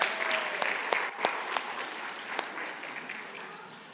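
A round of applause from a small group, with dense clapping that starts fairly strong and gradually fades over a few seconds. A few louder individual claps stand out.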